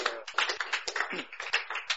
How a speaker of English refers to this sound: Oh, clap for the Lord Jesus.